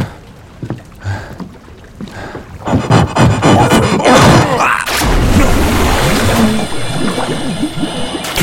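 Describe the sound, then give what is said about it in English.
Heavy, chaotic splashing and churning water, starting with a few scattered sloshes and then building into continuous, loud thrashing, as if someone is flailing and struggling to stay afloat. “Keep your head above water.”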